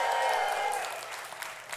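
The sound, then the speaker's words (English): An audience at the Lone Tree campus applauds and cheers to welcome the Lakewood campus, with dense, steady clapping and a brief high whistle-like tone at the start. The applause eases off slightly toward the end. “And so we're going to ask all of our campuses and here at Lone Tree, we're going to just cheer for each campus as we welcome them.”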